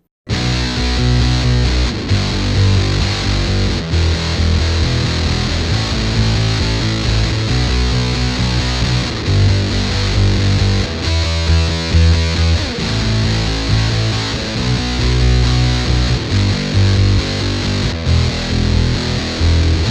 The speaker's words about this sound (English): In this tone, we're going to be making use of the Electroharmonics Russian Muff reissue, along with the Earthquaker Device's Tentacle to get us some octave dirt and breakup on the signal in the high end.